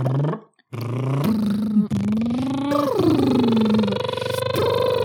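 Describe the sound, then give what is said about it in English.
A voice imitates an engine starting using the lips: a short sputter, then a loud, continuous growling drone that climbs, dips and revs back up in pitch for several seconds. “No, we're trying to turn on like an engine.”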